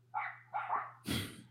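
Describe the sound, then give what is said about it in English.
A dog barks three times in quick succession, the last bark harsher and louder, over a faint, steady low hum. No one speaks. “I could be cranking out these episodes, you know, a lot quicker if it wasn't for this dog, this mutt barking in the background.”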